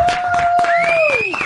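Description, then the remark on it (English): A slow clap: steady, evenly spaced handclaps, about four a second, with a long whistling tone held over them that bends downward at the end. No one speaks. “The slow clap. She gets the slow clap.”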